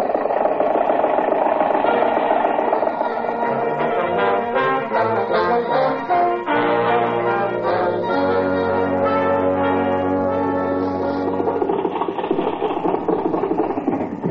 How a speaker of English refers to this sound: Confound your stinking motor car!